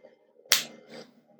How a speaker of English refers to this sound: Slap your face. No, slap your face properly. Harder.